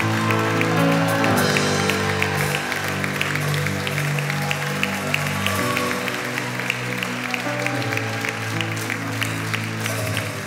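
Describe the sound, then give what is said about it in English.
An audience claps hands together in a steady, rhythmic beat to celebrate Jesus, loud, layered over sustained music throughout. “Somebody clap hands and celebrate Jesus.”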